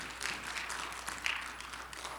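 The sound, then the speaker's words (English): An audience claps their hands together after a prayer, before being seated, in a dense, steady patter of applause lasting a couple of seconds, moderately loud with no voices standing out. “Clap your hands and you may be seated today.”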